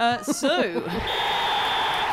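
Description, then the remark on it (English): A referee's whistle signalling the kickoff of the second half sounds as a single long, steady high-pitched blast lasting about a second, following a moment of talking and set over a continuous crowd-like background hum. “I think that's the whistle to kick off with the second half.”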